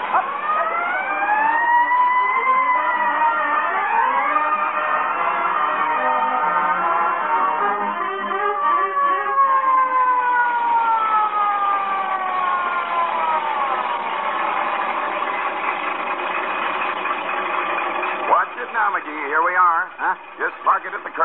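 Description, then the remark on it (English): A loud fire truck siren wails steadily for about twenty seconds, its pitch sweeping slowly up and down in long arcs, sounding tinny and narrow like an old broadcast recording. “Boy, when I roll past the Elks Club with a siren going 70 and me going 30, those guys see what I'm here.”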